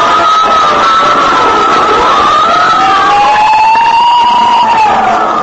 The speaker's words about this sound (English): Every time I hear fire engines at night, I think of Harrison Murdock and the Santilli case.